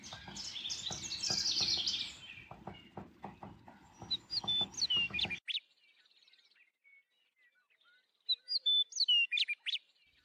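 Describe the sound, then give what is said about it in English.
Several birds sing and chirp in a backyard, a busy overlapping chorus with a low background rumble for the first five seconds, then quieter scattered chirps and a final burst of clear song. “The excerpt I read to you features the soundscape of my own backyard and reminds me of the simplistic power of mindful birding and mindful listening.”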